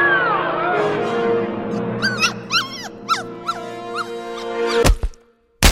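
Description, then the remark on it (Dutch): A puppy yips twice in short, sharp bursts near the end, after a sustained electronic tone with rising chirpy squeaks and a silent gap between the barks. “de puppy blafte 2 keer, dus de computer haalt 2 multiple choice antwoorden voor je weg.”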